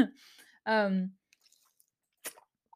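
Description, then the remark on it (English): Someone takes a quiet sip of water from a glass, then lets out a short voiced sigh, followed by faint wet mouth clicks and a brief breathy puff. “I had to take a little sip of water.”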